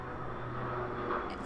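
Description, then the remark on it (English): A steady, low rumbling drone of an airplane passing overhead, constant in loudness, with a faint hum running underneath and no voices. “There's a plane.”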